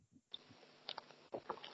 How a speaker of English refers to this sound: Audible gulp of water and then we'll move on to Red Bull.